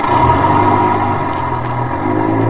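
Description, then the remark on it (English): A bus's heavy engine rumbles steadily, its low drone building slightly as it pulls out from a stop after an hour's ride, with faint hissy bursts over the continuous roar. “Waited until the bus pulled out.”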